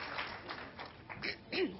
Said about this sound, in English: I think we want a round of applause for the people who are still standing.